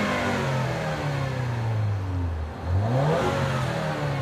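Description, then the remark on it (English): The turbocharged engine of a Lincoln MKZ with all-wheel drive revs loud, its droning pitch sagging low before surging back up in a second rev, with no one talking over it. “I thought the turbo would really kind of muffle it up, but that's pretty much it.”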